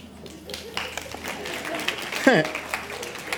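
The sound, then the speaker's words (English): A church audience claps for a father of two during a service, a dense, steady patter for about three seconds, with crowd murmur underneath and one short rising whoop partway through. “You're being clapped for having kids.”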